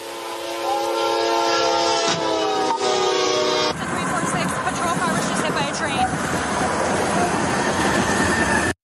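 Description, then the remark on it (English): A train horn blares steadily for a few seconds, then a sudden loud crash as the train strikes a police car left on the tracks by a Fort Lupton officer with a woman in the back, giving way to a continuous heavy, grinding roar of the train rushing past. “Cop puts a woman in the back of a police car, leaves the police car on the train track, and the train, well, here it is.”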